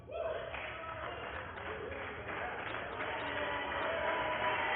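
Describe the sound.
Members of the US House of Representatives clap steadily in the House chamber during the censure of Representative Schiff, the applause dense and continuous and swelling slightly toward the end, with murmuring voices mixed into the crowd noise.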